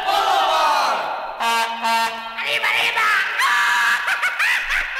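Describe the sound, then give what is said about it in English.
A loud celebratory Mexican grito, a tongue-in-cheek Speedy Gonzalez-style cheer by a band member opening a mostly instrumental song: a high, wavering yell that rises and breaks into yelping, trilling cries over about five seconds, with a brief sustained tone partway through. “tongue-in-cheek Speedy Gonzalez cheer is a celebratory scream, a grito.”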